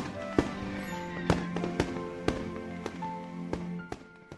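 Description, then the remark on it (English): Fireworks from an annual Independence Day fireworks show on Brown's Bluff, Colorado, explode in a rapid, irregular string of sharp bangs, about ten loud cracks over a few seconds, each ringing out briefly against a low rumbling background with no voices. “But to the intense frustration of Henry Brown, the decade would come to a close with no activity on Brown's Bluff beyond an annual fireworks show to celebrate Independence Day.”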